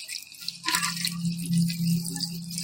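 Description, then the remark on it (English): A steady splashing of a drink with orange juice being poured back and forth between glasses to mix it at a tailgate, with a hollow resonant tone running underneath, continuing for a few seconds without any talking. “This is an old bartender trick. When you're at your tailgate, just pour it back and forth.”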